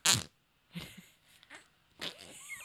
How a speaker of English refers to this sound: Yeah, this is my day today, playing with fart noises. As you know. Wait, let me get a good one.